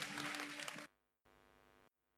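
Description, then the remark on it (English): A church audience claps together for their healer and savior in a loud, dense burst of applause over a steady sustained tone. The clapping stops abruptly after under a second, and a quieter held tone follows briefly. “Come on, let's give our healer and savior a big clap together right now.”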